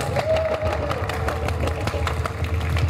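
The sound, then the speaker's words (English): A large audience stomps their feet and claps their hands at the same time to show excitement that Jesus is risen, producing a dense, rumbling roar of thuds and scattered hand claps that fills the space steadily for several seconds. “If you're excited, I want you to stomp your feet and clap your hands at the same time.”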